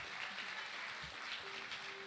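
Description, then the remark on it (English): A crowd gives God a round of applause after a prayer, a steady, dense patter of many hands clapping, fairly soft and unbroken throughout, with no one speaking over it. “Why don't we just give God a round of applause?”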